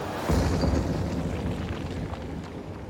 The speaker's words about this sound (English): The interior of the old church is blazing like a furnace. Now there is a huge crash as a section of the church roof collapses.